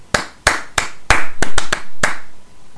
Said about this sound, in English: Oh, was that the clap? Do you want to do that again? Go. We'll do it one more time.